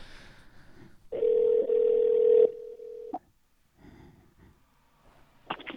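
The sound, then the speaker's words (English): A loud, steady telephone tone from an outgoing call to Iowa hums for about two seconds, then cuts off with a click, leaving quiet background noise and faint rustling. “So we're going to run my phone bill up again. We are now calling through to Iowa.”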